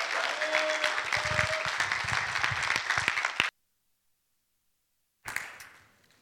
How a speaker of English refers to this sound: Okay, would you give a massive round of applause to this incredibly faithful man of God?